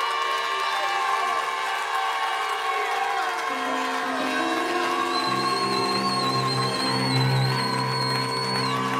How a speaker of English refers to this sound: Where's that shofar at? Blow that shofar. Come on. Cry loud. Spare not. I thought I heard it, but we really go hear it now.